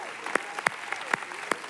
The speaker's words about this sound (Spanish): ¿Por qué no les damos un fuerte, fuerte aplauso a cada padre de familia?